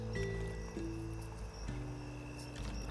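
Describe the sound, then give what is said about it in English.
Quiet sipping and swallowing of water, soft wet gulps over a steady low electrical hum, with no one speaking. “Excuse me, guys, I'm drinking a little water.”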